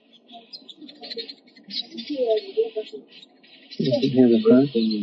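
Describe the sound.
Steady high-pitched chirping and twittering of birds outdoors, a continuous bright chorus in the background while a person talks over it, the voice growing louder toward the end.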